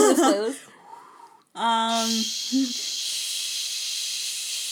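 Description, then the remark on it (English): A voice imitates TV static white noise, making a long, steady hissing shh sound that holds for a few seconds after some brief vocal sounds at the start. “Like white noise?”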